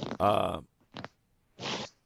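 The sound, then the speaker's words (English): Someone rustles around in the background: a few brief, scratchy bursts, like fabric or a zipper being moved, alongside a short voiced sound at the start. “I hear somebody's rustling around there in the background.”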